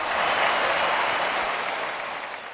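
A crowd bursts into dense, steady applause mixed with cheering, a loud wash of clapping that holds for a couple of seconds and then begins to fade slightly.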